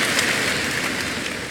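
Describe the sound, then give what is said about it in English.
A church audience claps together in dense, steady applause of praise, a continuous crackling wash of many hands that holds an even, fairly loud level throughout, with no voices over it. “Give the Lord another bigger clap of praise in the name of Jesus Christ.”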